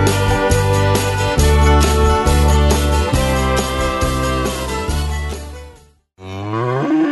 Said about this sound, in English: This is a cow whose milk became everyone's favorite cheese at the craft fair.